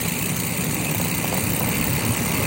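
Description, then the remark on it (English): A car engine idles steadily, a constant low rumble with a broad hiss above it that holds at an even level throughout, with no talking. “There's a car. There's that car.”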